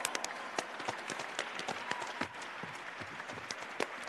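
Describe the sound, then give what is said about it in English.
An audience at a live show claps along as the performer warms up with a hand jive, many hands clapping in a dense, bright patter with a few sharper individual claps standing out, sustained without a break for several seconds. “You can clap anytime now.”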